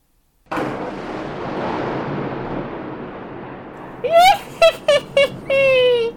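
A lightning bolt strikes a studio with a sudden burst of loud, crackling rumble that rolls on for several seconds, then breaks into a string of short, high-pitched whining blips as the power to the whole recording booth cuts out and the lights go out.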